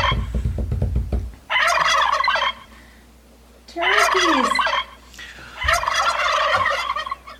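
Turkeys gobble in three loud, rattling bursts, each about a second long, separated by short pauses, with a low rumble of background noise between them.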